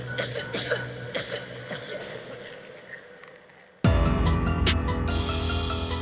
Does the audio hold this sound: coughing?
yes